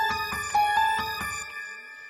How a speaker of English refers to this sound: Just give me some Illuminati sounds.